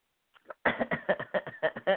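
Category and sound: human body sound, throat clearing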